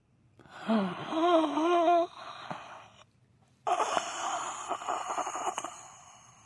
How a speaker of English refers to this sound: I thought you told me heavy breathing. I'm just doing it. I didn't know we're doing the live. Pervy breathing. I thought you guys wanted breathing for the background. So I'm literally giving you the sound effect.